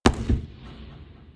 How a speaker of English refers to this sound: In that instant, a single gunshot rang out.